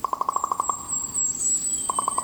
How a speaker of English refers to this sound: In Oregon's Mount Hood National Forest, far from Edgar Allan Poe's birthplace in Boston, Jeffrey Keller recorded this common raven's call of Nevermore.